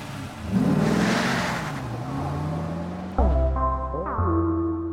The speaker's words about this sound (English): Shadow stepped on the gases, and the car went away through the city into the moonlight and towards out of the city to high school.